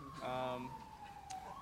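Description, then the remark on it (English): A police siren holds a steady wailing tone in the background, faint and continuous, while a voice briefly speaks over it near the start. “There's a siren in the background, so I missed the answer.”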